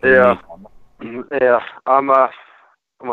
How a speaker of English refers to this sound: All right. Hold on. I'm hearing some distortion. Can you repeat yourself? No, I can't.